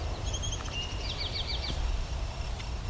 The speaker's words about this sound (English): Field sparrow.